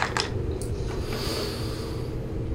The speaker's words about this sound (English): Those were dice.